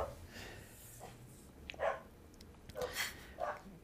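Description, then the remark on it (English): A dog named Kaiser barks a few times in short, sharp bursts, sounding muffled over a low background hum, with brief pauses between the barks. “The second Kaiser is barking.”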